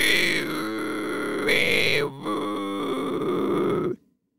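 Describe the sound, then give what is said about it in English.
A person imitates a Tasmanian devil by breathing in and squeezing the throat to make a reverse whistle: a strained, throaty inhaled screech, a sustained raspy wheeze with pulsing catches and a brief break midway, loud throughout before cutting off abruptly. “I'm breathing in air and kind of squeezing my throat together to make it kind of do a reverse whistle.”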